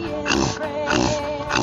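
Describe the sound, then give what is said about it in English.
A female dog breathes loudly and heavily, with rapid rhythmic panting bursts about three times a second, rough and snorting in texture, continuous with no voices. “I think she needs some water too, because she's making that loud breathing sound.”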